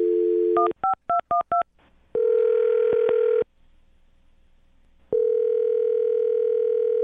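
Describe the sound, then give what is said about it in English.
A steady telephone dial tone cuts off into a quick run of keypad beeps as a phone number is dialed for a call from the radio show Brook and Jubal in the Morning, then ringback tones follow, each a long, clear electronic buzz with a pause between, loud with no talking. “I'm going to dial the phone number right now, get her on the phone, and find out why she's not talking to you anymore, okay?”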